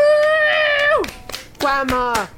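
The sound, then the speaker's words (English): A small family group of several generations claps in quick sharp bursts while high-pitched voices cheer with long, excited exclamations whose pitch drops away at the end, lively, at a grandmother's birthday party with kazoos and balloons. “You see a colorful lettering that says, "Happy birthday, Grandma," on it, and you see several generations of your family smiling and clapping and cheering for you.”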